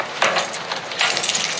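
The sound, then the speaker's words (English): Keys and watches clatter into a hat in a couple of bursts, a bright metallic jingle and clink that rattles briefly, pauses, then jangles again. No one speaks. “We'll put all keys and watches in the hat over there.”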